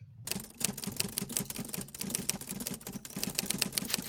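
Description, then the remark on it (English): Rapid, steady typing of a brief on an old Underwood manual typewriter: a dense run of sharp mechanical key strikes, fairly loud, continuing for about four seconds with no voices. “I think that's a brief being typewritten by an old Underwood typewriter.”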